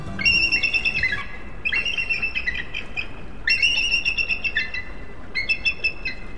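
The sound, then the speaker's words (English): Calls of two adult eagles flying high above the ground and confronting each other ring out in repeated bursts of high, piercing chattering notes, four loud phrases in quick succession over a steady background hiss. “Two adult eagles flying high above the ground confront each other, talons outstretched, then suddenly lock onto each other's talons.”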